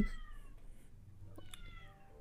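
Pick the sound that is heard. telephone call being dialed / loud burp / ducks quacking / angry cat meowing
angry cat meowing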